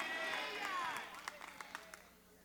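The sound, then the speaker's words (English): Several people running, jumping and stomping while walking around praying in a room, a quick irregular patter of heavy footfalls growing more distinct toward the end, over a busy wash of voices and crowd noise. “I hope you can hear us running.”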